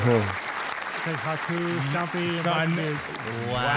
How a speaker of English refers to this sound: So, that was the crowd goes wild. That was the crowd fucking loves amazing.